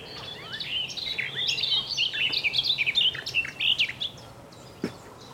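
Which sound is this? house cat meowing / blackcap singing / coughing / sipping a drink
blackcap singing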